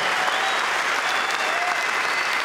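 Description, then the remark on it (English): A large crowd of golf fans at Royal St. George's during the British Open applauds the champion golfer of the year in a dense, unbroken roar of clapping, with faint whistles and cheers rising through it. The noise stays loud and steady, with no pause and no single clear voice. “Let's hear it for you guys.”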